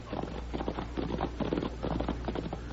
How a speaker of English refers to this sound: Quiet, Tommy. I hear horses.